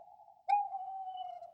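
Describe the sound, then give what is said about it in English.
A giant owl's screech: a loud, steady, mid-pitched whistling cry that starts soft, jumps suddenly louder with a sharp attack, then holds for about a second. No one speaks. “Liz wondered why the mouse was so scared, but then she heard a loud screeching sound.”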